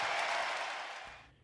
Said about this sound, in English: Klay Thompson to sit down, listen to the ovation for Klay. Klay moving his arms, trying to get the crowd to make even more noise.